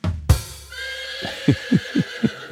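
A horse lets out a loud whinny with a sharp onset, its shrill tone trailing off into a series of four rhythmic, descending snorting pulses. No one speaks.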